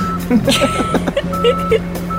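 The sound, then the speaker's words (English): A gas-powered forklift's reversing alarm sounds as it backs up, a loud, steady electronic tone that breaks once partway through, with engine rumble underneath and faint voices mixed in. “But as soon as you start backing it up, it makes this, like, loud beeping noise as you're doing it.”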